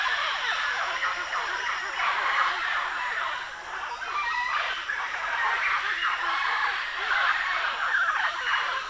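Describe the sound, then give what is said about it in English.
A large flock of mealy Amazon parrots, feeding on fruits in the canopy of a large tree, calls continuously overhead, a dense, raucous wash of overlapping squawks and harsh screeches that never lets up, loud throughout. “We paddle down a narrow channel to the shoreline and position ourselves under a huge flock of mealy Amazon parrots, feeding on fruits in the canopy of a large tree.”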